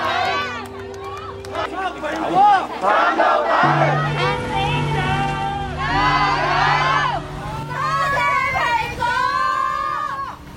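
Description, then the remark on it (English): In the evening, a large crowd outside the Apple Daily building in Hong Kong shouts slogans together urging the paper to press on, in loud, rhythmic bursts, many voices rising and falling over a steady low hum of background noise. “By the evening, more people had arrived outside the Apple Daily building. They shouted slogans and urged the paper to press on.”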